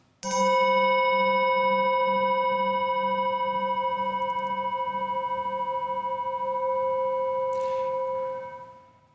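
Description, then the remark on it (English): A meditation chime is struck once and rings out alone, a bright sustained tone with layered shimmering overtones that hangs steadily for about eight seconds before fading away. “As we listen to the chime, let us remember our connection to each other and the world around us.”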